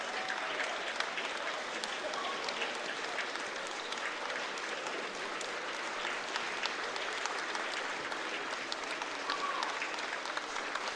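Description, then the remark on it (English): A steady round of applause from a crowd at a Gateshead FC match, many hands clapping in a dense, even wash for participants in a Gateshead FC Foundation initiative, holding at a constant level for the whole stretch without breaking off. “And they're getting a good round of applause there.”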